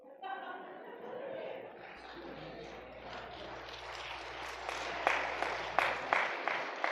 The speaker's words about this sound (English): I don't know if y'all clapping because you're glad I'm done or what.